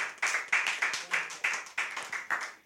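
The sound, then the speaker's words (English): A church audience claps together during a sermon in a steady rhythm, sharp bursts landing about three times a second, moderately loud with no voices on top. “I think you should clap for this one.”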